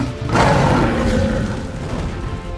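After a brief quiet start, a dragon's loud, deep fiery roar erupts and rumbles on for about two seconds as it flies outside, a booming bellow with no talking.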